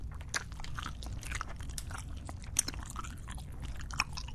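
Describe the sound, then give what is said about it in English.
Soft, wet chewing of white Haribo gummy frog candies, a steady run of squishy bites and mouth sounds with a couple of sharper clicks, no talking. “White Haribo frogs? Oh, I got a twofer.”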